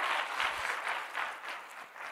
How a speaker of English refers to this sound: Come on, amen. Give the Lord a good clap offering, amen.